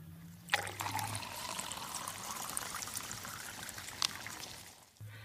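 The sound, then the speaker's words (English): Water pours steadily for about four seconds, a broad splashing trickle starting and stopping abruptly, moderately loud with a couple of sharp clinks, and no one talking. “can you just pour water into my mouth?”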